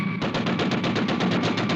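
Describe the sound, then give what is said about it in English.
A rapid, sustained burst of machine gun fire in a film scene, loud, with evenly spaced shots rattling off in quick succession for nearly two seconds. No voices are heard. “Oh, I think that's that gunfire is actually scratched onto the frame.”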